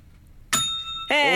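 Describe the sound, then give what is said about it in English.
A single bright desk bell ding rings out sharply and hangs for about half a second with a clear metallic shimmer, then a voice cuts in right after. “the old one was just a kind of silver bell. Yeah, that would traditional sit on like a hotel”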